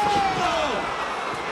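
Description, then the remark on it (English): A loud metallic slam of a steel chair against someone's back, heard over a roaring arena crowd, with a falling whistle-like tone trailing off after the hit. “Oh, the back to the steel chair.”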